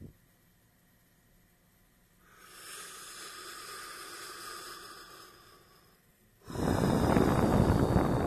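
After a brief quiet moment, a slow, airy inhale swells for several seconds, pauses, then gives way to a loud, forceful exhale, a deliberate deep breath taken as part of a breathing exercise.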